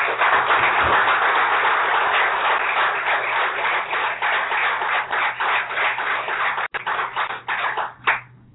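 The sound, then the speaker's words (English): A conference audience applauds steadily to thank staff, board and male engagement committee members, a dense wash of many hands clapping at an even loudness for several seconds before thinning out into scattered final claps at the end. “If you are a staff member, board member, or male engagement committee member, could you please stand now while we give you a warm thank you of applause.”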